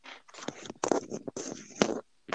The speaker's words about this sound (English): Are you okay? I'm hearing a lot of rustling.